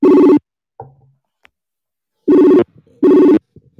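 An electronic video-call ringtone sounds in three loud, harmonic bursts separated by pauses while someone's phone is being called, with faint clicks and small noises in between, and no one speaking.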